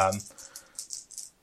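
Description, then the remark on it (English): Four red action dice rattle and clatter in quick, irregular bursts as they are rolled during a board game, fairly loud, after a brief voiced sound at the start. “So I'm going to roll my action dice. I've got 4 red dice.”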